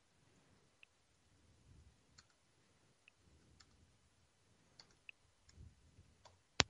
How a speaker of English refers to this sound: Is that you clicking through to things to find? Yeah, that was me going very out.